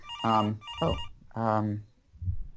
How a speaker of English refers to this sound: Yeah, I sensed my cell phone, but for some reason my landline is ringing, which is... You know what? It's probably one of those annoying call centers who want to try and sell you something.